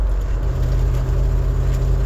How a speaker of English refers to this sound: A little traffic.